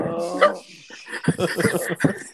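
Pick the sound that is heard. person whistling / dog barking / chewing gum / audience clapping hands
dog barking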